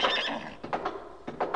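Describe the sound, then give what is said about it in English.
The Ranger's horse, Silver, neighs loudly, a long whinny followed by shorter, pulsing bursts of its call with no one speaking. “Oh, where's your horse? I'll show you. He must be a swell horse.”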